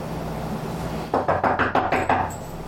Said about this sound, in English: There's a knock at the door.